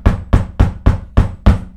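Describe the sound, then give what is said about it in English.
Six firm knocks on the wooden front door of a house in a steady, even rhythm, each a solid thud, with a short ring-off between hits and no voices. “I walked up to the front door, and I knocked.”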